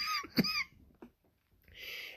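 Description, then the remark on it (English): A couple of sharp, throaty coughs, the first one loud and forceful and a quieter one following about half a second later, with no talking around them. “my goodness, I got the coughs going on.”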